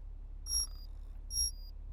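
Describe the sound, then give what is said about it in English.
An internal conduction alarm sounds twice at 5:35 Coordinated Universal Time, two bright, ringing chime tones about a second apart, each fading out, with no voices and only a low hum in the background. “This is your internal conduction alarm.”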